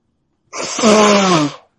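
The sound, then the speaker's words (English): A single loud, forceful sneeze bursts out of silence, with a voiced, drawn-out tail lasting about a second before cutting off. “Yeah, that was a major sneeze.”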